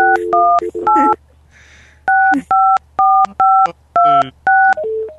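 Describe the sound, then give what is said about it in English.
A loud run of hotel telephone dial tones after a call dropped: about eight short electronic dual-pitched beeps in a quick, uneven sequence, separated by brief gaps over a low steady hum, with no talking. “Like, he dropped off and we got their dial tone.”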